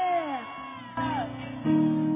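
A crowd shouts and whoops together in loud, overlapping bursts, several raised voices rising and falling across three surges, energetic with no single clear speaker.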